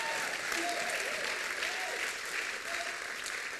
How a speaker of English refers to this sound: And if you believe it, could you give yourself a big clap and give God a clap for making you? Come on, I think you can do a lot better than that.